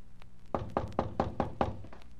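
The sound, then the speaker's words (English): Six firm knocks on a wooden front door in a steady, even rhythm, fairly loud, with a hollow thud to each rap and quiet room tone around them. “I walked up the stairs and knocked on the front door, never expecting an answer.”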